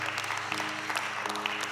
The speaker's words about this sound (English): give God another hand clap of praise? Man.